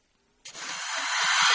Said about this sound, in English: I just got rid of it to add some snake sounds.